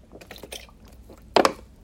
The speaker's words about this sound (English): Let me take a sip of water first.